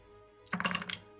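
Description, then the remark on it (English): A quick clatter of many six-sided dice tumbling into a dice tray, a dense burst of small hard clicks lasting about half a second, heard on its own with no talking. “All those dice hit the tray.”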